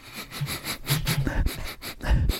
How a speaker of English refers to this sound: That's me sniffing my fingers there. I can still smell.